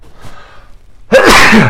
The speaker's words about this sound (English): All right, here's a sneeze.